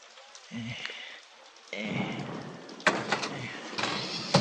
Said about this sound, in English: Hey, come on in out of the rain.